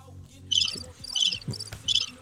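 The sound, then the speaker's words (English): Crickets chirp in a steady rhythm, four bright trilling bursts spaced evenly apart, clear over a low background rumble. “Some Mars crickets.”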